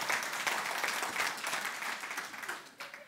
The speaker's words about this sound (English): So let's have a round of applause.